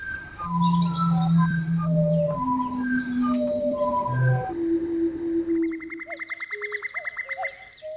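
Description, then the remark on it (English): Bird call recordings, chopped up and put onto a sampler, are layered to build a track, looping together into a dense, musical texture: steady held whistles and short pitched chirps stack up, with a rapid buzzy trill taking over near the end. No one speaks. “And this is the start of him layering up those sounds to create a track.”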